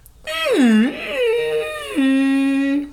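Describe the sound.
A human voice imitates a whale's underwater call with a long, sliding moan that swoops down, rises and wavers, then ends in a steady low tone. It is loud, with rich overtones, and nobody talks.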